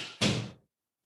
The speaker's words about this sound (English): Our recurring special guest Pepper scratching at the door wanted to come in.